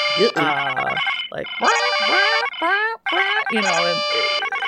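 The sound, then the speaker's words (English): Loud, overlapping electronic klaxons and alarms blare continuously on a spaceship bridge, with rising and falling tonal sweeps and dense harmonic beeps layered together. It sounds like a chaotic chorus of sci-fi klaxons going off at once. “And as she says that, all sorts of klaxons and alarms suddenly start going off on the bridge all around you.”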